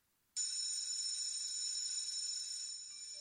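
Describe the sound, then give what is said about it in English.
A school bell rings, a loud continuous metallic clang that starts suddenly after a brief silence and holds steady, buzzing and bright, for about three seconds, dipping slightly near the end. “It was a Saved by the School Bell. That's one bell.”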